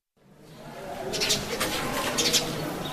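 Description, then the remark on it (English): A curious small bird chirps in a few short, high bursts through a classroom window at Wajir High School in Wajir as Form 3 students sit their end-of-term exams, over a steady background ambience, not very loud. “A curious little bird peeps through a classroom window as Form 3 students sit their end-of-term exams.”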